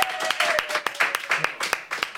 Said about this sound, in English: Round of applause, Pete Wicks.